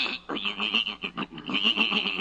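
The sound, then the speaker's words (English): A horse named Silver Moon whinnies, a shrill, fluttering neigh broken into quick pulses that lasts about two seconds with no other sounds around it. “Now you're talking real horse sense.”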